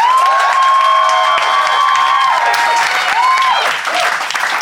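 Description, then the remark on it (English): A Phoenix audience applauds loudly and steadily for several seconds to vote for one side of a debate, dense clapping mixed with shrill whoops and cheers rising above it. “If you think Phil and Ben and therefore Henry is in the right, applaud now.”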